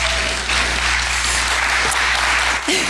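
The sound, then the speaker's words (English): An audience breaks into steady, sustained applause during a church service as a guest is invited up to speak, a dense wash of many hands clapping at an even level throughout with no voices standing out. “If you guys could give him a round of applause.”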